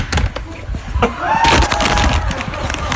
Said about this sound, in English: Sounds like he got tackled at the end. That's just him hanging up the phone. He just aggressively hangs the phone up.